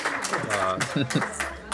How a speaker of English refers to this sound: No. They're cheering. Trust me. It's big cheers. All right. They can stop now. Okay. We're going to stop it now. Oh, wait. Hang on. They're going again. Sorry. They can't stop them. They're going too hard.